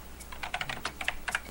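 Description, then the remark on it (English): Rapid keyboard typing, a quick run of light plastic key clicks in uneven bursts, fairly quiet, with no voices. “Still typing.”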